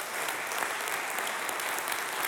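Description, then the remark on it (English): A church audience claps steadily, a dense wash of many hands forming a continuous, even patter with no pauses and no voices standing out. “So I'm glad you're clapping because with more and more people, there is more and more opportunity for you to flourish in the courts of God.”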